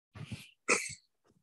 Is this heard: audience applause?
no